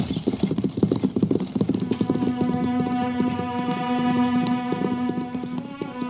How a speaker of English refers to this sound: What's the idea of making them horses run away? Don't be so dumb, Buck. Them nags won't stop till that buckboard is over the border.